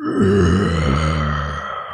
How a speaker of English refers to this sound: Wood splinters and shatter, debris, sawdust, pines, needles. The air fills with this wood and a low, guttural roar.